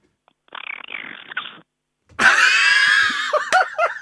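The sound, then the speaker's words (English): A person imitates a dolphin: a short, quieter raspy chatter, then a loud, shrill, wavering squeal that breaks into a few quick rising-and-falling chirps. “Let's have the dolphin impression first.”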